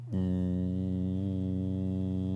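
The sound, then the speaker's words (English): A voice imitates a swarm of attacking wasps with a steady, low droning buzz, rich in harmonics and held at even loudness for about two seconds without a break. “And all of a sudden, all we could hear was this...”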